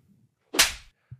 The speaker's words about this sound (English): I just slapped you in the face. Ow! Took a while to hit, but fuck. Yeah. It was so fast, I didn't even register it. Your face is turning red, dude.